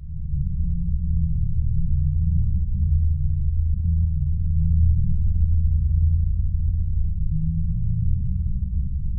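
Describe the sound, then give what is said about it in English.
An approximation of what the Taos hum is reported to sound like: a steady, deep, low-pitched droning rumble that holds fairly even in loudness throughout, with a faint fluttering texture and no voices. “would you like to hear what the Taos hum reportedly sounds like?”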